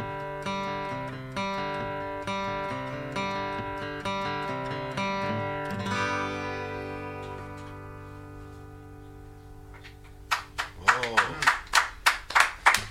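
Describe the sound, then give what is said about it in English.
A bright musical sting of stepped, rhythmic notes rings out and fades, then an applause sound effect played from an applause button follows: about eight sharp, evenly spaced hand claps, loud and clear. “I appreciate you hitting the applause button like when I get done.”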